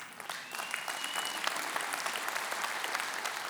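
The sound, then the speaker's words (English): An audience applauds steadily for a few seconds, a dense, crackling wash of many hands clapping at an even level with no voices on top. “Yeah, but you're not going to clap here in a minute.”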